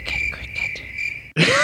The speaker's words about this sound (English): I can put crickets in. That's my sign for crickets.